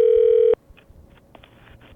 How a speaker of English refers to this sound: Let's call that number up in the local Portland area code and see if that still goes to anything.